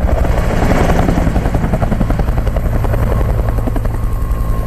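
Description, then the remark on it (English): A helicopter's rotor thumps steadily and loudly throughout in a film clip about a battle, a rapid rhythmic chop over a deep engine drone, continuous with no voices. “Yeah, I feel like, emotional, because I've been in helicopters, you know, when I was with the 101st, and I was in peacetime.”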